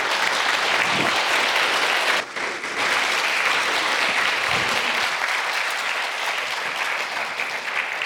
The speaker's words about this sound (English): Give them a round of applause. Matter of fact, I think we need to stand up and give them a standing round of ovation.